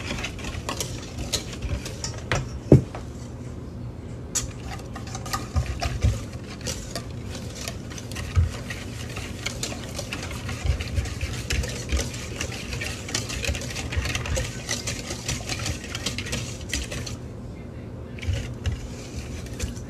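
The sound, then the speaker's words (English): Fast, steady stirring of hot oil with sugar in a large bowl until the sugar dissolves, with a continuous scraping churn and scattered light clinks of a utensil against the sides. “You may hear me stirring it a bit fast, but that's only because I have a big enough bowl.”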